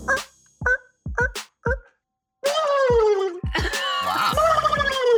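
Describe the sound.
A person imitates a turkey gobble with a rapid, warbling, throaty rattle, starting with a few short choppy bursts and then breaking into a long, loud, pitch-wavering gobbling call.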